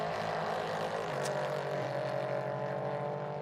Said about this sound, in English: Now, has he got that car going again? It's running. I can hear the engine from our effects mics over there. Full left-hand lock. And Luca back in the right direction.